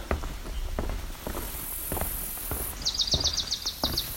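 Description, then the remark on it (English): A swamp sparrow sings a brief, even trill of rapidly repeated notes, while footsteps crunch steadily underneath throughout. “That's a swamp sparrow.”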